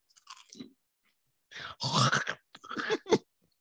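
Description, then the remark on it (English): Crunchy chewing of a rice cake: several dry, crackly bursts of mastication in uneven clusters, with short pauses between bites, fairly loud and with no talking. “Can you hear me chewing?”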